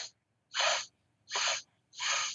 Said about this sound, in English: If you take your forefinger of your right hand and put it on your nostril, you're just breathing through the left nostril to the count of four, like so.